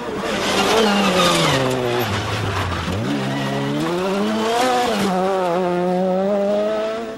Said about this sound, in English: Well, that really is great fun, ladies and gentlemen, boys and girls. That was a car racing. Now this is a great thing. Great sound effect.